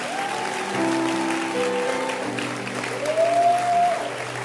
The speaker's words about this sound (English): Can you clap your hands that you made it today? Oh, don't stop clapping. Keep clapping.